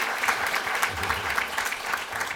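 A crowd at Pepperdine applauds steadily, the dense patter of many hands clapping at an even level throughout, with a faint low murmur underneath.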